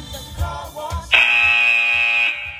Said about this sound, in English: Keep pushing till that buzzer goes.